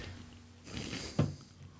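Someone crunches cereal right into the microphone: a rough, crackly chewing burst that ends in one sharp crunch. No one speaks, and the chewing is fairly quiet.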